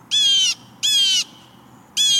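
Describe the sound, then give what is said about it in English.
A blue jay at a bird feeder, after eating sunflower seeds, gives three loud, harsh calls, each about half a second long, with short pauses between them and a faint background hush, then flies off. “When it's finished, it calls again and flies off.”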